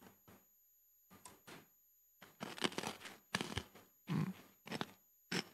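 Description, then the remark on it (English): Someone bites into a crunchy, very sweet chocolate-coated sweet and chews it, a series of irregular, crisp crunching bursts separated by short pauses, with no talking. “I want you to take a bite, savour it.”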